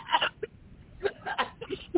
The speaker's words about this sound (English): Lordy mercy, I started to laugh and I ended up coughing. Excuse me.